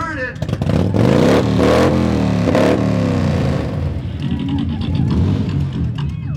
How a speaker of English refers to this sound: This is the winning motorcycle at the Broken Spoke Saloon's Loud Pipes Contest. A straight kick built from scratch by the owner, 74 cubic inch Harley engine, and a shovel frame.